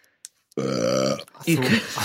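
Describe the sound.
A loud, drawn-out belch rumbles close to the mic for most of a second, followed right after by someone starting to speak.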